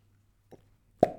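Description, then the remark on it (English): A woman's fart: one abrupt, blunt burst with a short low rumbling tail, preceded by a faint soft blip, over a steady low hum and no talking. “Did you just fucking fart? I hope the mic picked that up.”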